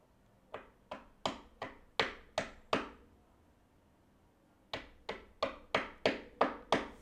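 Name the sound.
knocking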